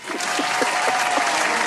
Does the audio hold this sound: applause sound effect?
yes